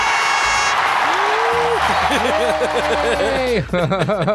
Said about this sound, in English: Insert fake applause.